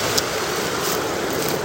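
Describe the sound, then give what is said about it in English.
Rain starts falling onto a rushing stream, making a dense, steady hiss with no distinct drops standing out. The sound holds an even loudness throughout, and no one speaks. “It's starting to rain. You'll probably hear the water getting louder.”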